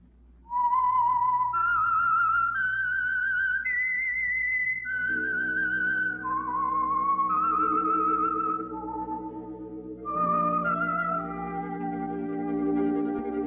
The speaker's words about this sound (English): Whistle is your signal for the Signal Oil program, The Whistler.